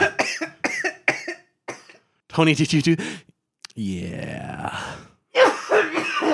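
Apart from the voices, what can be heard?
coughing and throat clearing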